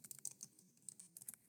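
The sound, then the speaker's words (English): Rapid, uneven typing on a computer keyboard, the keys hit hard, with many sharp little clicks in quick bursts, fairly quiet, with no voices. “You can probably hear me typing.”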